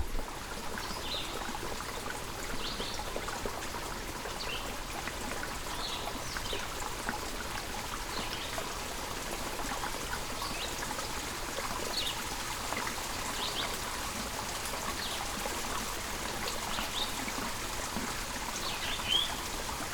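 A steady, continuous trickle of mountain spring water babbles along at an even, moderate level, with small splashes and drips flickering through it and no voices.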